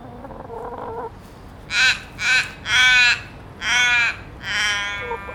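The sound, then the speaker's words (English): A forest raven calls five times in quick succession, each caw loud, harsh and drawn out, against a quiet background with no one talking. “A beautiful sound, isn't it? It's a raven, isn't it? I think. Is it a forest raven?”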